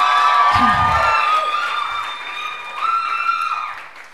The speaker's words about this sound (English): We can just give him a bigger round of applause.